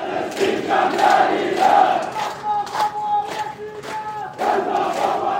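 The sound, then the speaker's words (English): A large protest crowd in Tahrir Square, Cairo, Egypt, chants "Ya Palestine, Ihna Asfin, Ihna Kaman Mihtalin" in loud, rhythmic unison as police push them out. Many voices rise and fall together in repeated phrases, with brief dips between bursts before the chant swells again. “Police pushed and shoved the crowd out, but not before they could chant, Ya Palestine, Ihna Asfin, Ihna Kaman Mihtalin.”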